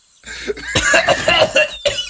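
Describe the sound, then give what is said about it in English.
A person coughs hard, a quick run of harsh, raspy coughs bunched together, followed by one more sharp cough after a brief pause. No talking is heard. “I immediately start coughing and put the bag away.”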